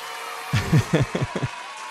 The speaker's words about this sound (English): drop in some cheer noises and some clapping. Like, we finally did it.